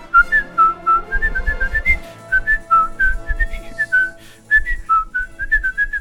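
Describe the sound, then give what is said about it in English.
A person whistles a bouncy, melodic cartoon theme tune, clear notes hopping in pitch with a steady rhythm, some low thumping beneath, no talking throughout. “Yeah, I don't think you can whistle for the full length.”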